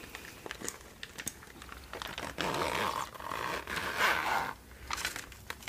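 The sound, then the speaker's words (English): A zipper with a little tag is pulled open in two short pulls with a raspy ratcheting texture, surrounded by soft crinkling and handling noises from packaging. No one speaks. “It's got a little tag here for the zipper.”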